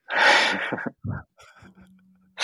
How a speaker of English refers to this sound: He's breathing.